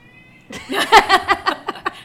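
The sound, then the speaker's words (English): A fat black male cat meows insistently in a rapid run of short, strained cries, loudest early and tapering off, with no talking over it. “I don't know if you guys could hear that, but that's the fat cat making his presence known.”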